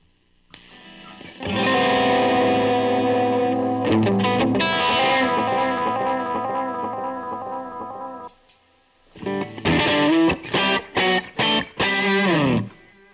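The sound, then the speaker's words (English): A guitar pedal's siren effect: a loud, distorted, harmonically rich tone sustained for several seconds, then chopped into a run of quick stuttering bursts. No one speaks. “I love this one. I love this, the siren.”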